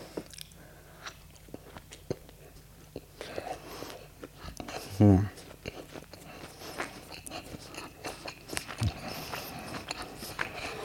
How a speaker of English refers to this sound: Let me have a bite of this hot dog.